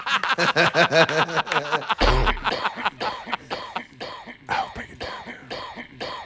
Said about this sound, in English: Yeah, that and the coughs and the snorts.